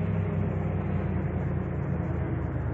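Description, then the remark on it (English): A car pulls over and stops, its engine a steady low rumble that holds at an even level throughout, with no voices. “I'd better pull over.”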